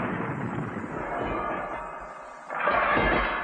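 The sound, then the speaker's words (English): Jacob Marley's ghost drags heavy chains behind a door in Richard Williams' 25-minute Scrooge special. The chains drag and rattle through a dense, rumbling wash of noise that rolls on without pause, swelling louder and harsher for the final second. No one speaks. “But for now, Scrooge's service bells start ringing, followed by the sound of old Jacob Marley's ghost dragging his chains.”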